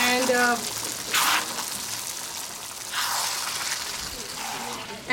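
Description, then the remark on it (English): Water pours into a cooking pot for cooking soaked beans to make rajma, a steady splashing rush that swells in two louder gushes before settling, with a brief voice-like tone at the very start. “Okay, so this is going to have a lot of water, but we just want to cook.”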